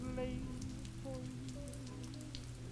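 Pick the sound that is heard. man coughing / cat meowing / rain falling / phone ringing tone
rain falling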